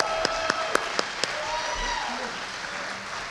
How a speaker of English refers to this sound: That was hot, wasn't it? That was hot, wasn't it? Give him another round of applause for that one.